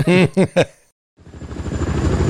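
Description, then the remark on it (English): A few short voiced sounds, a brief pause, then a helicopter's rapid rotor thudding fades in and grows steadily louder, as if the aircraft is approaching, as Barney goes for his helicopter lessons. “But Barney now goes for his helicopter lessons.”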